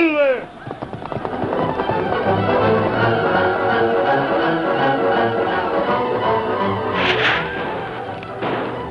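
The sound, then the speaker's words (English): Horses gallop hard in a steady rumbling rush as attackers on ponies charge down a hillside toward a wagon train, letting out wavering, howling cries over the hoofbeats, with a couple of sharp bursts of noise near the end. “The Lone Ranger quickly mounted Silver and raced toward the wagon.”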